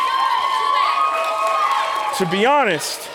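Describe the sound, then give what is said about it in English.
An audience claps and cheers steadily for a few seconds, a dense wash of applause with whoops and a rising, bending shout near the end. “To be honest, you clapping at that makes me feel like you're teasing me, and I don't like being teased, all right?”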